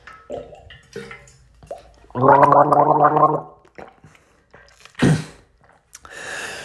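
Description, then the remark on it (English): A person sitting in an ice bath gargles ice water for about a second, a loud bubbling, rhythmic rattle in the throat, surrounded by short gasps, a sharp exhale and breathy noises. “I gargled that shit as proof that I drank water.”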